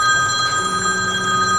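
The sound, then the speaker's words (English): A telephone rings steadily with a bright, continuous electronic tone, fairly loud, with no voices over it. “Sorry, I don't even know who this person is who is calling up.”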